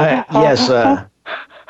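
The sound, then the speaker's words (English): A voice imitates the heavy panting of typical porn-star breathing as a sound effect: a long, voiced, moaning exhale followed by three quick, breathy pants in a fast rhythm, loud. “Because if you've been breathing like, kind of like the typical, you know, porn star. Some sound effects like that, right?”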